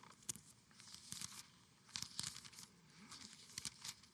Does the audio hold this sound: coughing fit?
no